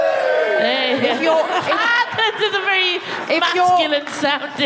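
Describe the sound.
A crowd cheers and whoops loudly for several seconds, many voices overlapping in a steady, dense roar with a few higher shouts rising above it.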